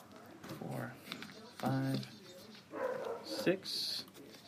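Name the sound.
dog barking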